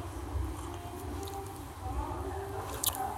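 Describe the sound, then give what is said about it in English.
A quiet sip from a glass of mimosa, with soft mouth and liquid sounds and a brief slurp near the end, set against a low, steady room hum. “Let me take a sip of my mimosa real quick.”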